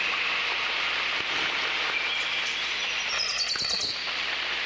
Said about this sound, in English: Okay, now I'll go back to the reverb.